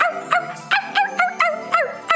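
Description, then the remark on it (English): A dog, Rain Dog, barks and yips excitedly in a quick, repeated series of sharp, high-pitched calls as it is called to play fetch, fairly loud, with short gaps between each bark and no talking. “Here, rain dog. Where are you, boy? Who wants to play fetch? Come on, boy.”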